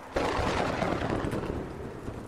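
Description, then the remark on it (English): Heavy rain suddenly surges into a steady, dense roar, with deep rumbling thunder rolling underneath throughout. No voices, just the loud wash of the storm. “When the rain picked up, I ended our call.”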